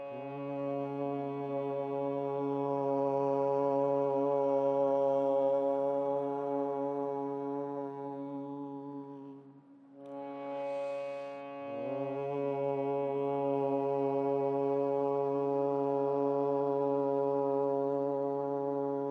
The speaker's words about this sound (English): So first we'll hum. So big breath in. So the Om begins and ends with the hum. So with three Oms, breath in.